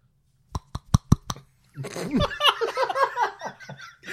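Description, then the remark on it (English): Five quick, sharp hand slaps land in a steady, even rhythm, each one a crisp smack. Right after them comes a stretch of laughter and wordless vocal noises. “They don't just made slapping noises with his hands.”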